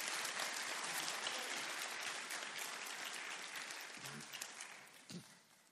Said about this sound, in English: a good round of applause here. Give her a hug.